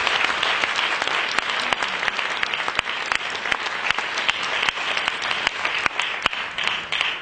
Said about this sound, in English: Let's give everybody a big round of applause.